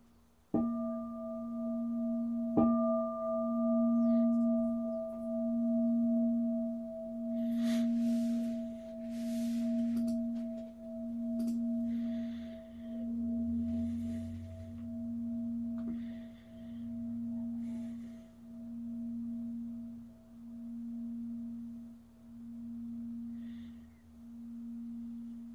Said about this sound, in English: I'd like to listen to the bell continue.